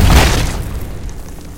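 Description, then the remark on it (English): A door blasts apart in a single loud, deep boom with a crackling, shattering edge, then a rumbling tail that slowly fades away. No one speaks. “And the door explodes.”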